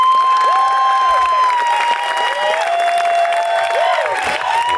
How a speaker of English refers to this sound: Hey, I like you too. That's awesome. Yeah, that's the best applause I've ever gotten. That's great.